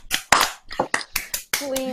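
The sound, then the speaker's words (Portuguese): Scattered hand claps, about seven sharp bursts in two seconds, sounding like a small audience applauding unevenly to welcome a guest. A brief vocal tone rises at the end. “As Revenges of the 90s, este é o homem responsável pelo sucesso destas festas, e é um entertainer nato, e é um gajo muito boa onda, e pronto, bem-vindo, e palmas também para ti. Bem-vindo. Palminhas.”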